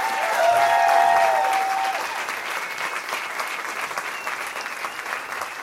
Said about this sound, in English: Guys, big round of applause. Give it up. Energy.